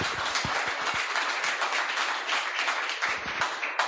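A crowd applauds steadily for about four seconds, many hands clapping in a dense, crackling wash at an even loudness, with no voices over it.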